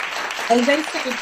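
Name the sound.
applause sound effect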